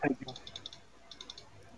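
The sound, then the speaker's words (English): Quick, light computer keyboard clicks from a participant on a group call, tapping in two short bursts, fairly faint, with a brief voice-like sound at the very start. “Yeah, who is typing?”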